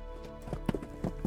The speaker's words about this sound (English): In the semi-darkness, there was the pounding of horses approaching us, alerting us to the fact that we weren't alone on the road. As they passed us, I strained my eyes through the dancing light of our torches to get a look at the rider's face.